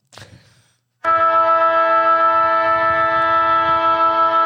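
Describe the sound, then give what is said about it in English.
A short rough burst of noise, then a loud siren blares on one steady, buzzy pitch without rising or falling, holding continuously to the end. No one speaks. “Hit me the siren.”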